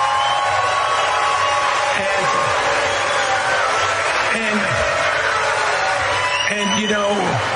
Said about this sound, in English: This is the great thing about this country. Booing is allowed, but it doesn't change the truth. It doesn't change the truth.